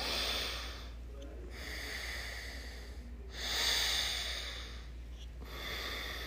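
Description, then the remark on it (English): Slow, deliberate alternate nostril breathing, in through one nostril and out the other, with three long airy inhales and exhales in a steady rhythm over a low constant hum. Nobody speaks. “And you do alternate nostril breathing.”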